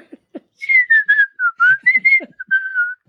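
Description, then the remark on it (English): A person whistles a short, wandering tune, the clear notes sliding between pitches for a couple of seconds, preceded by a few soft clicks. “And I asked him, do you whistle and hum at your office when you're at work, too?”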